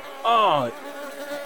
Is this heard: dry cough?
no